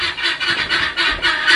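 Guinea fowl calling in a harsh, raspy chorus, with loud repeated squawks coming in rapid overlapping bursts that fill the whole clip with no voices.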